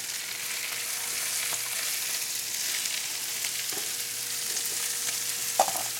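Onions sizzle steadily on a hot flat-top griddle, a constant bright hiss with occasional scraping and clinks as they're pushed around, with no talking.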